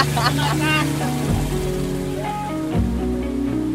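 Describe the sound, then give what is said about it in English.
A boat engine rumbles steadily and loudly as the boat takes off on a river, a constant low drone with a voice sounding over it throughout. “is washing her feet in the river as we are taking off in the boat.”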